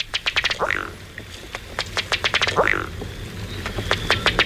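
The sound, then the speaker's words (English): A duck gives a rapid, sputtering series of clicking calls, like an outboard motor trying to start, broken by a couple of rising whistled notes, with steady low background noise. “Hey, Frankie, that sounds like an outboard motor trying to start up. But there's no boats here. It's not a motor.”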